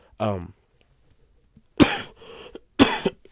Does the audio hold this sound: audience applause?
no